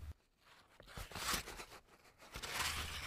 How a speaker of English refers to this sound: Mordecai unrolled a paper, which showed the order to destroy the Jews.